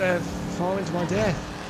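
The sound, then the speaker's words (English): A voice imitates a car driving as a special effect to cover up a cut, making a few wavering engine-like vroom sounds that rise and fall in quick bursts over a low steady rumble. “Hang on, we'll just do a special effect. It'll cover up the cut. Just a little drive.”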